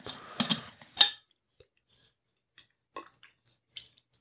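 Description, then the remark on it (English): A water bottle cap is unscrewed without moving away from the microphone, opening with a loud burst of plasticky crackling and clicks, then trailing off into a scatter of faint ticks and small snaps. “Can you hear me unscrewing this obnoxious top to my water bottle?”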